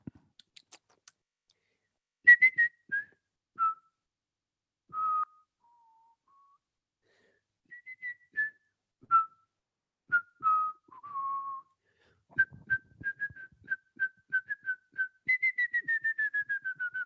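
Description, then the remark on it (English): A person whistles the theme tune from the film Home Alone, pitched notes rising and falling in a clear tune, ending with a quick run of repeated descending notes, with faint clicks in the background. “Okay, I'm going to give you an audio, I'm going to whistle it.”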